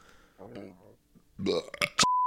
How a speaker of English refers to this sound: Maybe I was coughing because of the burp.